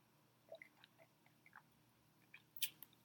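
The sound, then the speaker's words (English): A quiet sip of a drink: a few soft wet slurps and mouth clicks over about three seconds, ending with a brief sharper swallow-like click, with no talking. “Hold on, let me take a sip.”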